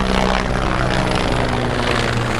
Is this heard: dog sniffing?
no